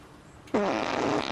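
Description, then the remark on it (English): A single loud, drawn-out fart from a man outside a house bursts in after a moment of quiet, sputtering and rasping for nearly a second before trailing off slightly. “Another guy farting outside the house.”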